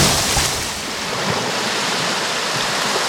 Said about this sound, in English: A great stone springs from the river's depths to the height of a small swamp donkey before plunging back into the river, causing a small wave of icy river water to slosh over the side of the raft.